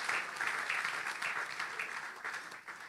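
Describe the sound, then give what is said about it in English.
A church audience gives themselves a round of applause in praise of God, the dense patter of many hands clapping at once with a few sharper claps poking through, holding a fairly even level for a few seconds before easing slightly. “Yeah, you might want to give yourselves a round of applause and praise God for that.”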